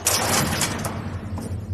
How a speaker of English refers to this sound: Oh, with the door just closing.